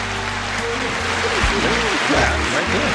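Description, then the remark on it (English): A steady burst of hand claps on the Soul Radio show fills the whole clip, dense and continuous like a round of applause, with voices talking and calling out over it. “Give us some hand claps, man.”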